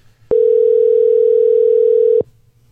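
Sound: telephone dial tone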